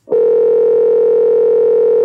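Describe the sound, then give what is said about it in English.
A steady, unbroken telephone dial tone hums loudly for about two seconds, a single sustained electronic pitch with no talking over it, as an outgoing call is about to be placed. “Call the dad, man. Call that dad.”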